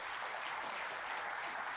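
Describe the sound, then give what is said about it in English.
An audience claps together in a dense, steady wash of applause, many hands blending into continuous crackling noise at an even, moderate loudness with no voices. “Now, can we just give a clap?”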